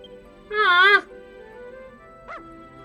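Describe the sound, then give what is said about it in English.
A female dog named Lyra gives a drawn-out, wavering whimper lasting about half a second, followed after a pause by a single short, high yip, both fairly loud over a faint steady hum. “Alright, so we're going to give the dog a name.”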